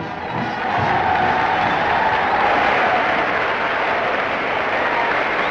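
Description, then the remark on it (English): About 3,000 Progressive Party convention delegates in Philadelphia's Convention Hall cheer Henry Wallace and his family loudly in a steady, dense roar that swells in the first second and holds without a break, with no clear speech rising above it. “Henry Wallace and his family draw loud cheers from 3,000 delegates.”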